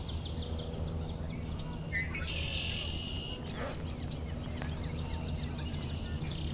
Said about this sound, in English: So we have red-winged blackbird.